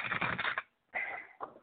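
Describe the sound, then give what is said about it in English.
Cards are shuffled for a card reading: a dense, crackling riffle, a pause, then two shorter papery bursts of shuffling. No voices. “Shuffling these cards here.”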